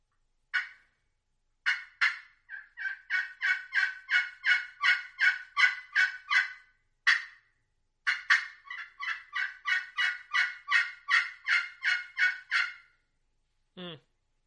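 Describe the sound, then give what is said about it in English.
A crystal friction turkey call (Exterminator crystal with a yellow heart striker) imitates another hen in the flock with long, rapid runs of sharp, raspy yelps in two loud bursts, followed by a brief squeaky downward note at the end. “Now I'm going to hit something crystal or glass just to throw a little bit sharper sound out there and just to make it sound like there's another hen in the flock.”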